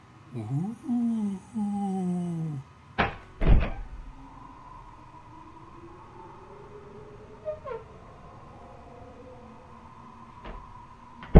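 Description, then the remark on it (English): A door creaks open with a long, wavering groan, followed by a couple of heavy thunks as it swings and settles, then a quieter lingering creak and faint knocks. “Finally, the door. Is there any sort of incantation? Yeah. Open sesame.”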